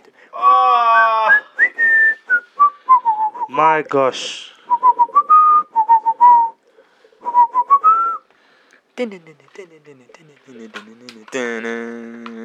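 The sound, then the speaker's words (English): A person whistles a TV theme tune, a bright stepping melody of short and held notes, with brief voices and exclamations at the start and near the end. “I know the whistling was from the, what did I say?”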